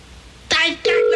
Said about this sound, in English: Hello? God, it's ringing. Thank God it's ringing.